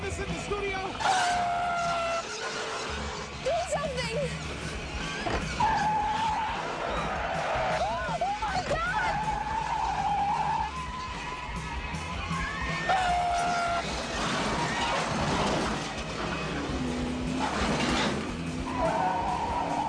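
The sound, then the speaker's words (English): Loud, drawn-out tire squeals as a food truck skids, slides and jackknifes, with repeated screeching bursts over a rough roar of road noise and indistinct voices underneath. “By the way, this is the part I mentioned earlier where the truck that's actually sliding and jackknifing towards them right now is a Blump's food truck.”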